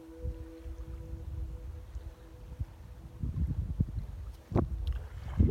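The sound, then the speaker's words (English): Low, steady wind rumble buffets a small ocean rowing boat on open ocean, with washing and sloshing swells and a few sharp splashes or knocks growing louder toward the end. No one speaks. “I've touched nothing outside of this little rowing boat, ocean rowing boat, and I've heard the roar of the wind and the rumble of the distant waves, the wash of the oars”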